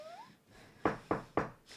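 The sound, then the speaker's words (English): Three loud, hard knocks on a door in quick, even succession, each a sharp thud, preceded by a faint rising squeak and low background noise. “Why the fuck can you knock so hard?”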